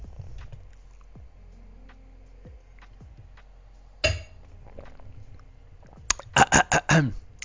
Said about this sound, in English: Sip of water.